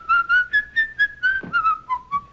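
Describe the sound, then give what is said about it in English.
Jimmy whistles the tune of Yankee Doodle in England: a clear, bouncy melody of quick, evenly paced notes with no talking over it. “So Jimmy, the first time we see Jimmy is he's in England whistling Yankee Doodle.”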